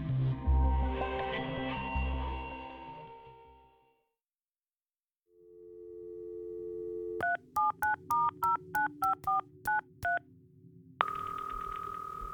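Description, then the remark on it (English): A string of about ten short touch-tone beeps dials out in quick, even succession over a low hum, ending in a steady ringing tone, preceded by a burst of busy background noise. “he received an unexpected phone call from New York.”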